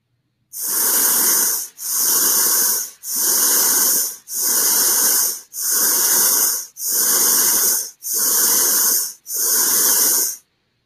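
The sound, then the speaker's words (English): A pulsing hiss played to people sleeping in a lab: eight loud, bright bursts of rushing noise, each just over a second long, repeating at an even pace with short silent gaps between them. “It sounds like someone hissing at you almost.”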